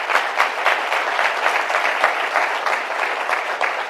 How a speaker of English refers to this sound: Thank you, everyone. Applause.